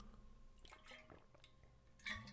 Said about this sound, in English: And hold on, let me get some water.